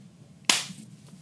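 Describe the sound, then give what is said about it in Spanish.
A single sharp hand clap rings out once after a brief quiet stretch, a crisp snap with a short fading tail and no voices. “Voy a dar un aplauso.”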